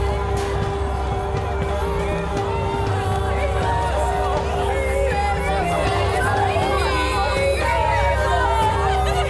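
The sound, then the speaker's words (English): A large crowd, the masses of Rome in an audio drama of Coriolanus, shouts and clamors at once, a dense, steady roar of overlapping voices with scattered whoops and cries rising above a low rumbling hum throughout. “We loved him, but like beasts and cowards, gave over to the masses who shouted him out the city. Here come the masses.”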